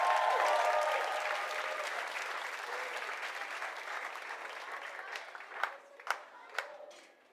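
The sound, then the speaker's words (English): A crowd applauds and cheers steadily for kids returning to their parents during a worship service, the dense clapping loud at first and slowly thinning, with a few distinct sharp claps standing out near the end before it fades. “I don't think we can cheer for our kids enough.”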